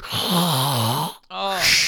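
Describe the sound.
A voice imitates the breathing machine of a wheelchair user at a movie theater showing Inception: two drawn-out, raspy, droning wheezes separated by a brief pause, fairly loud, with no other sounds around them.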